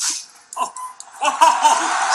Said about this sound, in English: No, they're barking. They're barking.